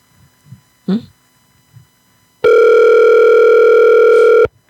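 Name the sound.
telephone ringback tone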